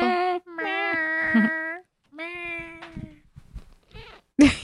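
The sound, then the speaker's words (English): A cat named Pickle, touched on her back, lets out a series of drawn-out, wavering meows, two long loud cries followed by softer, choppier sounds and a sharp, brief squeak at the end. “She'll make a noise if you touch her. Did you hear it? Yeah, I heard it.”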